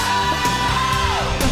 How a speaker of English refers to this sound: There you go, the rock chick comes out. Wow. Screaming banshee. Wow.